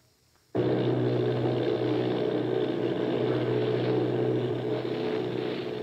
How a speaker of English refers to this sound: Army bombing plane V-843 off Bayonne, New Jersey. Lieutenant Volt commanding 8 bombers, reporting to Commander Fairfax Langham Field.